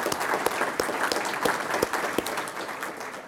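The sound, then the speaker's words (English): A crowd at a panel event applauds steadily, many hands clapping in a dense, continuous patter with a few sharper claps standing out, sustained throughout. “And I also want to especially thank and give applause”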